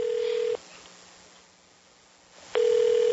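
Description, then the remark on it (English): A steady electronic ringback tone from an unanswered phone call to a hotel: one ring ends, a couple of seconds of quiet follow, then the next ring begins. It is loud and clear, with no voices. “All right, they're not answering at this fucking hotel.”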